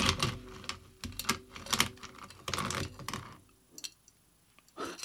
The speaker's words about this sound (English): So I'm supposed to dry shake first, which means I gotta empty this ice out. Ooh, there's too much ice.